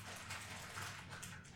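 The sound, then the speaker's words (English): A plastic bag rustles as it is stuffed into a coat pocket, a continuous, steady crinkling and crackling that lasts throughout, with no voices. “Okay, I know that you can hear me putting this plastic bag back in my coat pocket on the recording, but you're just going to have to deal with it.”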